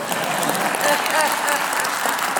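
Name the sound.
audience applause and cheering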